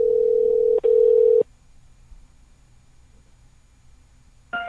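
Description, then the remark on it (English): A loud, steady telephone tone while calling Delta Airlines hums for over a second with a brief break, then cuts to near silence before another tone begins at the very end. No one speaks. “We're going to call the Delta Airlines.”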